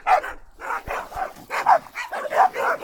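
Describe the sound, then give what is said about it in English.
A person imitates a dog barking, letting out a quick run of about eight gruff woofs in close succession, loud, with no other talking. “Dogs.”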